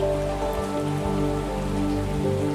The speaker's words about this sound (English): Behind the waterfall, the air is cool and moist. It feels so pleasant against your skin.